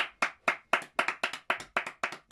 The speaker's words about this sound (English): Can we get a clap, please?